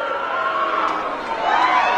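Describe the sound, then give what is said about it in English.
A crowd's sustained, drawn-out booing fills the entire two seconds: a dense, steady roar of many voices that dips briefly in the middle, then swells louder again. “Keep booing, little girl.”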